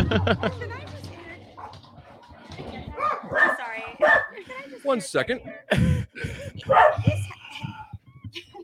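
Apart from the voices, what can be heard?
dogs barking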